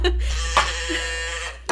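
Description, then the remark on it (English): A toy cow lets out one sustained, buzzy electronic moo with a bleating, nasal quality, steady and fairly loud for under two seconds, followed by a brief click at the end. “That's just a cow toy that she put out to make me happy.”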